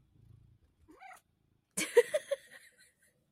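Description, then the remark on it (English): A cat named Cinder vocalizes while being lifted and held: a soft low rumble, a short rising meow, then a louder, rougher burst of chirping cries with some rustling, fading after about a second. No one speaks. “What's the best thing about being a cat?”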